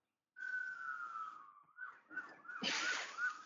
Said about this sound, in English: I hear a siren. So do I.